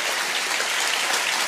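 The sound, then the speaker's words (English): A church audience cheers and applauds during a sermon: dense, steady clapping with a broad bright hiss throughout, loud and sustained with no speech over it. “They weren't cheering me like y'all are.”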